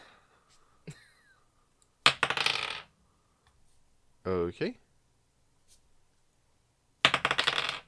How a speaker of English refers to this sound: Rolling some dice.